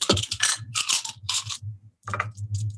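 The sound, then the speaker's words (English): Damage dice clatter and rattle across a hard tabletop in several quick bursts during a game, fairly loud, with a brief pause before a final tumble, over a low steady background hum. “And I need my damage dice.”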